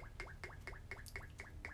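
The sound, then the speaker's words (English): A drink glugs steadily out of a bottle as it is poured, about seven quick, hollow gulps in an even rhythm, fairly soft, with a faint low background hum and no talking. “the pouring of the drink is the most interesting part. Because it sounds like. The bottle sounds thirsty when it's pouring out.”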